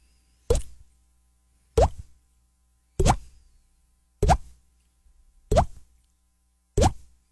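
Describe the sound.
Six evenly spaced mouth pops imitate water dripping, each a short hollow plop with a quick rising pitch, repeated about once every second and a quarter with silence between.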